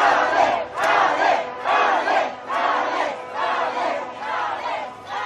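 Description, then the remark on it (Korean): A large rally crowd chants the Korean slogan "탄핵" (impeachment) in unison, repeating it in steady, rhythmic bursts about once a second, loud, with no separate speaker over it. “이럴 때 외치십시오.”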